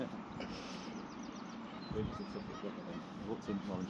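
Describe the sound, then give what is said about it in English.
A tufted duck gives a few short, rough calls, set against a steady outdoor background with faint murmuring voices. “What was that duck? I think it was just a tuffy duck in quiet.”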